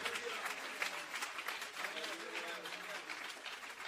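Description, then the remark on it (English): An audience at a worship service claps unto the Lord steadily throughout, a dense, continuous patter of many hands filling the room at moderate volume, with faint voices mixed in underneath. “And if you're with me this morning, why don't you just clap unto the Lord and say, God, let me understand this word tonight.”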